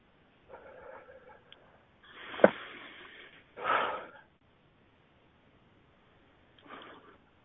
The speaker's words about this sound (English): I can hear you breathing, and that's good.